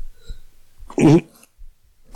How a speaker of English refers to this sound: Is that the missus that's got COVID in the background? Yeah, she's got a cough. She has COVID.